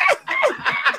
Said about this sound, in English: I'm laughing at a bird.